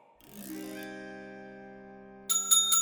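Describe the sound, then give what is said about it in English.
A bell rings out clearly with a bright, sustained tone that slowly fades, then a quick burst of sharper, higher rings follows near the end. No talking is heard. “it is so late, and that bell is... a lot.”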